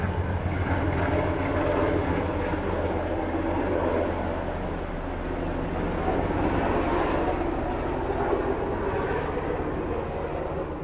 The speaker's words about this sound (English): Yeah, see, I live so far in the middle of the woods that helicopter was really just barely above the tree line, and there's no one, like, there are no neighborhoods.